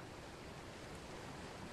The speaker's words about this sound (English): The waterfall's beautiful. Yes, it is.